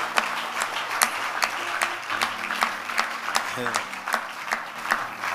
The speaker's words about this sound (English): Give God a clap. You are tired of clapping? Clap.